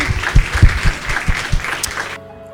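A round of applause: many hands clapping in a dense, steady patter with a few heavier thumps underneath, holding loud for about two seconds before cutting off abruptly.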